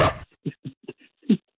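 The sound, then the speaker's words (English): A dog gives a burst of noise, then a string of short, sharp yelps and whimpering cries in uneven rhythm, moderately loud, with no talking. “Poor dog's all confused.”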